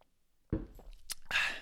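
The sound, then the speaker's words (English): Mouth sounds of someone drinking water at a kitchen table: a sudden wet slurp, a few quick swallowing noises, then a breathy exhale after the sip. No one speaks. “So I'm drinking water right now because I'm not concerned about performance right now.”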